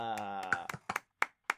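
A short, sparse round of applause: five or six separate hand claps at an uneven pace, following a brief sustained humming tone at the start. The claps are sharp and fairly loud.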